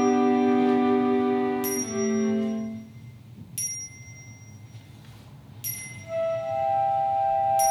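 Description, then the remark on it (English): Bells ring out in several overlapping strikes, each leaving long shimmering tones that slowly decay, with fresh bright strikes arriving every couple of seconds over a low rumbling background. “So back to the bells. Oh, the bells.”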